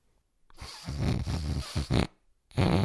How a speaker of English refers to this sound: Then breathe back out slowly through your nose like this.